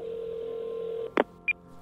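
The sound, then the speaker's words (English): A steady telephone dial tone hums for about a second, then cuts off into a short click and a single high electronic beep as a number starts being dialed, clear; Alexei Navalny phoning the men who poisoned him for a hoax call. “During 5 months of recovery, he staged a brilliant hoax call, phoning the men who poisoned him, tricking them into believing he was a comrade from Russian intelligence.”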